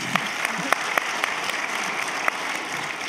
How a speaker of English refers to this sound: I was hoping they were going to applaud,